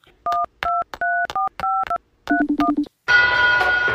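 A phone rings with an incoming call: a quick run of electronic beeping tones in short uneven bursts, then a lower buzzing tone, ending in a loud harsh electronic blare. No one speaks.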